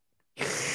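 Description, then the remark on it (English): After a moment of near silence, a loud rush of heavy breathing hits the microphone abruptly and holds, a harsh, windy hiss filling the rest of the short clip with no talking. “you're just breathing real heavy, huh?”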